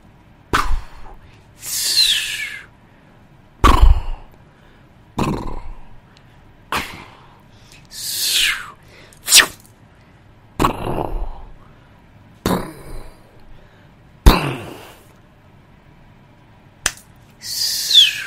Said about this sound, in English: I got it. It's like every other fireworks I've ever seen.